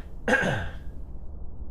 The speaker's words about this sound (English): Clear my throat.